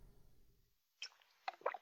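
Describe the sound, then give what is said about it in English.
A few wet slurping and squishing sounds as someone takes a quick sip of moonshine, after a moment of low rumble and near silence. “He's taking a sip of moonshine over there.”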